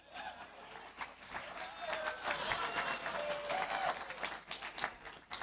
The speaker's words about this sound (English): A bit of a clap would do.